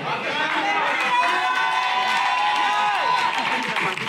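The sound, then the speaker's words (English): A church audience shouts and cheers together during a sermon, a dense, sustained roar of many voices filling the space at steady loudness for several seconds. “Oh, now your shouting is gone, eh?”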